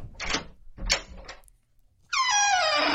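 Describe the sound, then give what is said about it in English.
A few heavy, distinct metallic clunks of an antique iron skeleton key turning in the lock of a cabin's front door, then a brief pause before the door creaks inward with a loud, drawn-out, squealing, tonal groan. “With a chunky clunking sound, it turns and creaks inward.”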